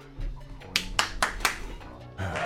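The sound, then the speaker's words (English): About four sharp hand claps in quick, even succession, each a crisp bright smack, ringing out over a low steady background hum. “Can we get a hand clap in because or something?”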